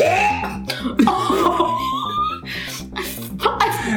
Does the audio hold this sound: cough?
yes